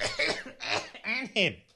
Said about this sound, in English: Excuse me, I must do a bit of a cough thing.